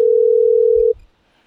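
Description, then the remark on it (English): A telephone ringing tone on a call: one steady, loud electronic burst lasting nearly a second, then it cuts off into near silence. No one speaks. “Pick up the phone.”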